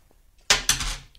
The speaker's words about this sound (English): Roll the dice, see what you got for you this week. Okay. There you go. The dice is all right. There.